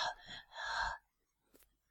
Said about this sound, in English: That was weird, right? Because I hung up the phone, but I could still hear … breathing, which is a little bit spooky, isn't it?